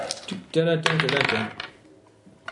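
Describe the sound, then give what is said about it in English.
Dice clatter and tumble across a hard table for about a second, a bright rattling burst with a ringing edge, then settle into quiet before one last small click; dice rolled for a precision shot in a game, coming up a 7 and a 4. “What the fuck, dice? What the hell?”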